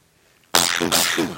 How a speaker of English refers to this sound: Here's a sneeze.